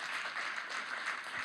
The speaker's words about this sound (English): Hey, church, would you be willing to just give a cheer, a clap, an encouragement?